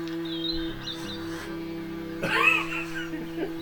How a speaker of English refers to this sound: Oh, I hear a duck.